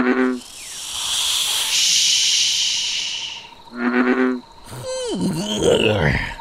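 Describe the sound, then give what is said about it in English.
A frog croaks in two short, raspy bursts separated by a long airy hiss, followed by assorted chirps and squeaks, up in a rainforest canopy. “Okay, enough with the croaking. We heard you, Frog.”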